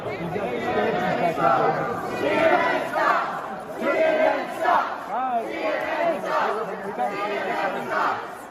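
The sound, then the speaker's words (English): A crowd at CPAC shouts and jeers continuously at reporter Jim Acosta, confronting him over the Cuomo scandal; many overlapping raised voices form a loud, agitated roar with rising and falling surges of yelling. “So also at CPAC, one of my favorite moments of the last week was Jim Acosta getting shit on by the crowd and confronted over the Cuomo scandal.”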